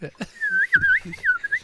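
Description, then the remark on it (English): A person whistles bird-like calls while playing a song, a high warbling tone that slides and trills in short phrases, with a few brief low murmurs underneath. “The hardest part to me is making the bird noises That's true.”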